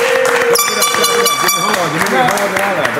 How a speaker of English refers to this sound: wait, what's the air horns for? And now he's directing the air horns. We're bringing him into work over here for directing the air horns.